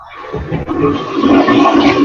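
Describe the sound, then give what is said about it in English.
A toilet flushes in a bathroom with a loud, rushing gush of water that swells quickly and holds steady, a broad churning roar with no voices over it. “did you take your phone into the bathroom with you?”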